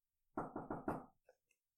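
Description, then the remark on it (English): Four quick, solid, loud knocks on a door in a steady rhythm, followed by a couple of faint small taps before silence. “Random knock.”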